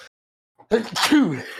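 A single sneeze bursts out loud after a short silence, with a voiced intake sliding into a sharp, breathy blast.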